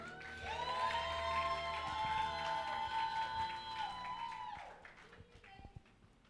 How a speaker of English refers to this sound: Please, with Jesus' joy and our hands clapped together, let's welcome our very own friend,